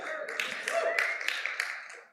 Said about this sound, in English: Yep, thank you. You can clap for that.